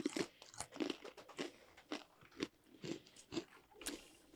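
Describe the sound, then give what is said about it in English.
Dry crunching of someone chewing a wheat cracker between wine tastings, with sharp crackly bites repeating in a steady rhythm about every half second, no talking. “So I think we should each both go ahead and eat. Probably eat a the cracker.”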